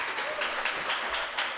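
A crowd applauds in a dense, steady wash of clapping that stays fairly even in loudness for a couple of seconds, with faint voices mixed in underneath.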